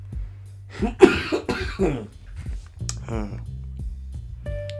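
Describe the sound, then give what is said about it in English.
Several harsh coughs come in a quick cluster, fairly loud, followed by some throaty vocal sounds over a steady low hum. “Should I cut out the coughs? There's a lot of coughs.”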